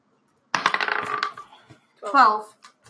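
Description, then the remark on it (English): Dice clatter and tumble across a hard tabletop in a quick, rattling burst lasting under a second as a player rolls hit dice in a game, followed after a pause by a brief voice. “So now you're gonna have to roll your hit dice.”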